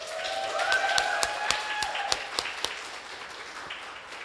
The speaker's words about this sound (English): So can I have a round of applause?